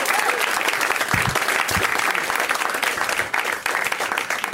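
An audience applauds a comedian steadily for several seconds, a dense, even wash of clapping that stays loud throughout, with faint voices and hoots mixed into the noise.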